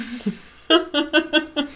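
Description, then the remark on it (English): A dog named Oliver makes noises: a quick run of five short, tonal yelping bursts in steady rhythm after a brief quieter sound, fairly loud, with no one talking. “Yeah, he is my parents' dog, Oliver, and he decided he wanted to spend some time with us today.”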